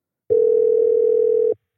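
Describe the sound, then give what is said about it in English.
A telephone call rings out as a single steady electronic tone, mid-pitched and fairly loud, holding unbroken for just over a second before cutting off, with no voices; it is a call being placed to Buzz, author of Friday Night Lights. “Let's give him a call.”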